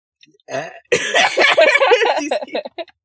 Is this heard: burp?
yes